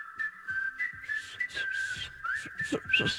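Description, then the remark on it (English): A bright, steady whistled melody opens a boy band's pop song, gliding between sustained notes over a light rhythmic backing with soft percussive hits building toward the end. “Starts with some whistles.”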